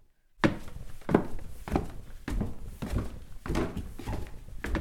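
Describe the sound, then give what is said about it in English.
Heavy footsteps thud at a steady walking pace, about eight dull steps in a row after a brief moment of silence, with no voices. “I can hear your footsteps.”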